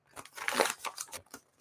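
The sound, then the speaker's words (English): A clean, crisp sheet of paper is crumpled and torn, a quick series of crisp, crackling bursts with a louder ripping tear in the middle, fading into a few small crinkles. “I did tear it.”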